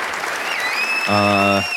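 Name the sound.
audience applause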